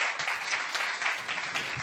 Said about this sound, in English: And so I just want to give a shout out to them. I think we can all do that just by giving them a round of applause.